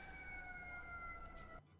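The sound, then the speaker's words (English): An emergency vehicle siren holds a steady, slightly falling tone over low traffic rumble, then cuts off abruptly near the end. No one speaks. “One moment. I have sirens.”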